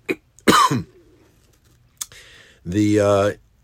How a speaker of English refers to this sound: First of all, in advance, I apologize. I'm fighting a lingering cough, and I can't seem to beat it. I'm feeling fine, but the cough will be there throughout the talk.